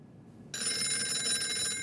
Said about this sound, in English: Roland King's phone is ringing.